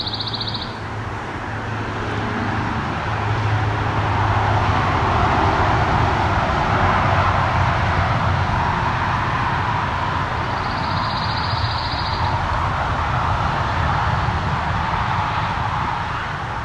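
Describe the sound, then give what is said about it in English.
Two short, even, high-pitched trills from a pine warbler in a red pine, one at the start and one partway through, cut through a loud, steady roar of traffic on Highway 6, a highway with intermittent traffic. “So what we're hearing here is a pine warbler in a red pine.”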